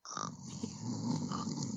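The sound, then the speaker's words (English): A person imitates the snoring of Murphy, a big dog with sleep apnea, as heard at 2 a.m.: a continuous low, rumbling, throaty snore-grunt that fills the moment, loud. “Did his sleep apnea get better since he lost the weight?”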